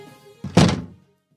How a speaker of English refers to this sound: He makes his way to the kitchen, opening and closing the cabinet doors.